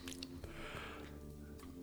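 Quiet, close-up mouth sounds of someone taking a drink, with soft wet swallowing and squishy noises over a steady low hum, no talking.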